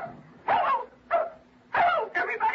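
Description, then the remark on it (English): A female dog, prompted to talk, barks and yips in four quick bursts as if saying hello, the last two running together into a higher, excited yelp, with quiet pauses between them and no one talking. “She said hello. That's a dog. It's canine.”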